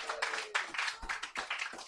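An audience applauds to welcome a show's guest in a dense, crackling wash of many hands clapping, pulsing unevenly in volume for about two seconds with no voices over it.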